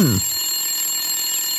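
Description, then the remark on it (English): A telephone rings with a brief electronic trill at the start, followed by a thin, steady high-pitched tone that carries on at moderate loudness. No one speaks. “It is a telephone.”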